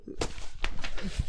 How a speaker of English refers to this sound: I'm slapping too, you fucking cunt. That shit hurt my hand. Motherfuckers been slapping me the whole time.